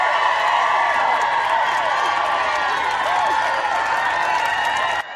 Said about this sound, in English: So we'll let those applause linger there for a little bit.